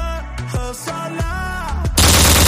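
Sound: gunshot sound effect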